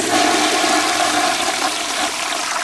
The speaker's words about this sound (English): Plumbing, a toilet flush makes a lot of sound.